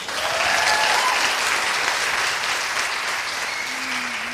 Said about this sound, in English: Don't show hands because people at home listening won't be able to see that, but maybe a clap. Who's excited to be here?